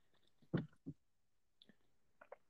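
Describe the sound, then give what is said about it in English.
Someone chewing food, with a few soft, irregular crunchy bites and mouth clicks spaced through an otherwise quiet moment, no talking. “Sorry, I'm chewing again.”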